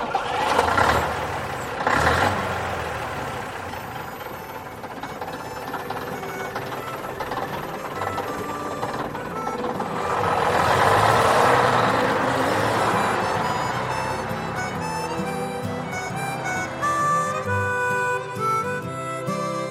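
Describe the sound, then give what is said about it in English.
A vintage bus engine drones steadily while driving, a continuous rumble that swells midway, with whining gear tones rising toward the end and no one talking, heard from the front of the bus. “No, it's quite nice just listening to the engine and not thinking about anything.”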